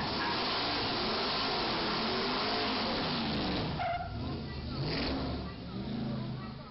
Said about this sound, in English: He turned left and he was burning out as he did.